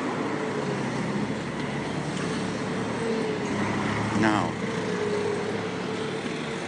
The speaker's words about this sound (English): The roads are narrow. Cars are coming up the hill and down the hill. And there's a BMW and there's a Nissan coming up the hill. And there's a Honda.